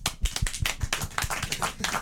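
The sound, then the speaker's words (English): A short burst of hand clapping welcoming a new member, quick and steady, like a few people applauding together, with no voices over it. “So, round of applause.”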